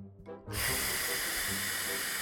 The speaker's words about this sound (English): You want me to vape? Yes, you have to start it by vaping. Yeah, just blow it into your microphone, so I'm really upset. Make sure we can hear you pull, too.